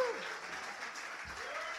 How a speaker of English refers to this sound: Give them a huge fucking round of applause, guys.